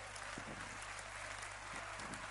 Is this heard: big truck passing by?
no